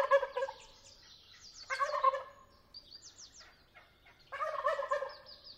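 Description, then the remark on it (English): Several wild turkeys gobble at dawn in loud, rattling bursts after roosting all night in a tall sycamore, heading off to find breakfast, at the Patagonia Sonoita Nature Preserve near Patagonia, Arizona. Three main outbursts overlap, with high songbird chirps and whistles scattered in between against a quiet outdoor background. “It's dawn, and the wild turkeys who roosted all night in a tall sycamore tree are heading off to find breakfast and making sure everybody knows about it.”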